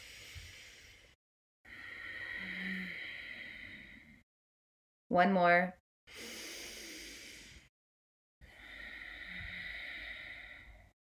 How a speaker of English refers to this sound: it's going to feel like you're fogging a mirror in front of you with your mouth closed